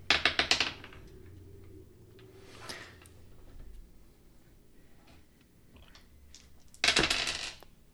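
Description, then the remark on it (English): A burst of hard little clattering hits near the start, then quieter scattered ticks, and a second loud rattling clatter near the end, as many dice tumble across a table. “So many dice.”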